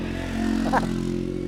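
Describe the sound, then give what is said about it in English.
A motorbike engine drones steadily as it approaches, a low continuous rumble with a brief rising whine in the middle, with no one talking over it. “I'm gonna stop talking because there's a motorbike coming.”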